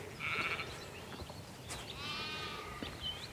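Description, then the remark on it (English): Two wavering sheep bleats ring out across an open sheep field with large trees, on farmland with a view of the Brecon Beacons, a short one and then a longer, quavering call, with faint bird chirps and soft outdoor ambience in the background. “Large trees, sheep field.”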